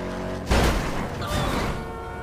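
A steady engine drone with a loud crunching impact about half a second in, then a second, weaker crash a moment later, as cars collide during a drag race in a video game.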